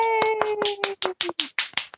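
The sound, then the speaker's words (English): A quick, steady burst of about ten sharp hand claps in two seconds, with a held, slightly falling vocal tone sounding under the first half. “I think we should clap.”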